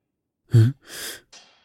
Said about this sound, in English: Oh. False alarm. Just a sneeze. The unsatisfying front half of one, at any rate.